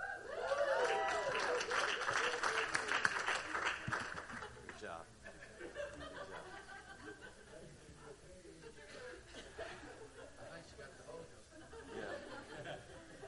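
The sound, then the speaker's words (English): A single person cheers loudly at the start amid scattered laughter and murmuring from a crowd, then the noise settles into quieter background chatter. “See, I got one person cheering for me.”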